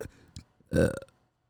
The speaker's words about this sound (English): My burps are weak as shit, but I can still burp on command.